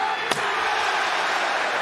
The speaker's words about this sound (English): This led to Miro's wife, CJ Perry, debuting to distract Hobbs and allow Miro to hit him in the back and the head with a chair.